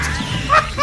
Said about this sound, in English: What was with the fucking post-production Wilhelm scream they gave Jeffrey Tambor